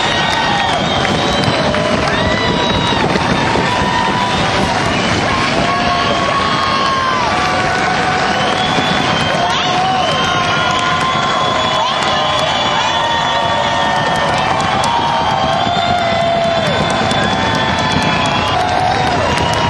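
A large concert crowd in the balcony of the Ryman Auditorium pounds on the wooden pews in a loud, continuous rumble of beating, mixed with cheering, shouts and high whistles, everybody on their feet calling for more after the band left the stage.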